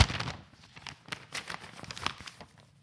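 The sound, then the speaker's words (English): A sheet of paper, a diploma, is flapped and shaken, giving a series of quick, crisp rustling swishes and crinkles over a few seconds, with no talking. “Now it's time for the paper flap.”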